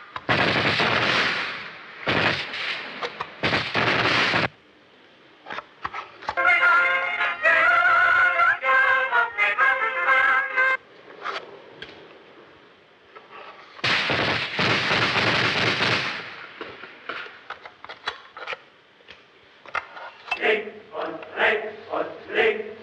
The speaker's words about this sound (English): and it's directing our attention and sometimes even contradicting the types of images we see, as we'll hear gunshots over something where, you know, you wouldn't presumably think there would be gunshots.